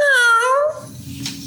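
A cat stuck in a bathroom howls once, a loud, drawn-out yowl whose pitch wavers for under a second before fading into a low, muffled rumble.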